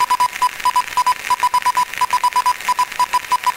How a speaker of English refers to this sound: Ah, they don't write Morse like that anymore.